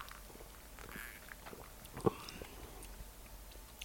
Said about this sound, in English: Shall we sip? Yeah. Let's do it. Bottoms up.